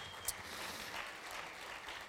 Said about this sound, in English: Thank you so much, Ella, for an amazing initiative. Let's give Ella a round of applause.